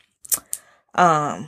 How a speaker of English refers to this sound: So I know y'all heard my nails clicking, like, I was grabbing air.